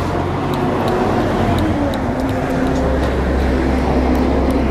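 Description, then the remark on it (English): Steady roar of city traffic in central Los Angeles, with engines rumbling low and a dense wash of road noise that never lets up, plus faint scattered clicks and knocks on top. “Walking around central Los Angeles, trying not to get hit by cars.”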